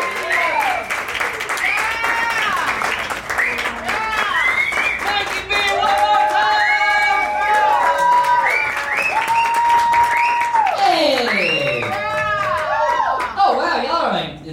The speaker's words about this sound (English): And make sure when y'all laugh, laugh it the fuck up for him, okay? For all the comics. Let's give him a big ass one. Start clapping.